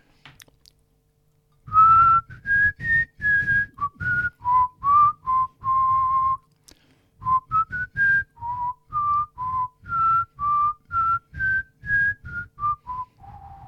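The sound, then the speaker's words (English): A person whistles a tune: a string of clear, evenly spaced notes in two phrases with a short pause between, ending on a lower, softer note. No talking. “It is difficult to whistle to order, I have to say.”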